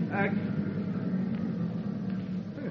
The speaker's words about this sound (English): Here comes the car. Now, go away.